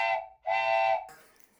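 train whistle sound effect

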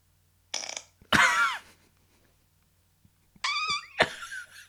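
fart sound effect

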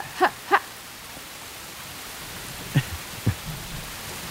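rain

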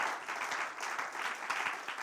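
audience clapping hands

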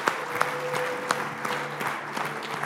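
audience applauding worship team

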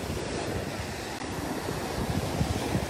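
water

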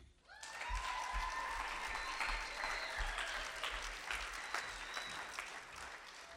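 audience applause

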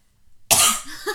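coughing

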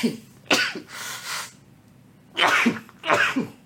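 sneeze

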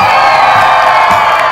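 audience cheering and shouting

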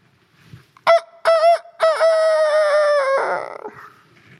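rooster crowing

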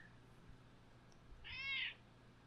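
cat meowing

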